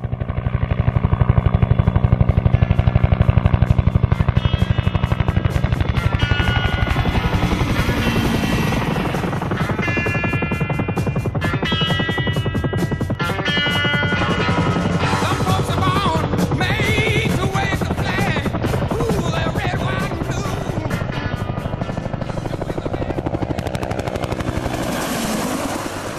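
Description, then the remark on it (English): A Bell UH-1 Huey utility helicopter's rotor thumps in a steady, rapid beat, loud, with a roaring turbine whine layered over it. No one speaks; the heavy chopping fills the whole stretch without pause. “That's the sound of the Bell UH-1.”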